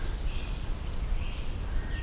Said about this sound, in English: Very rapid sounding black-throated green warbler.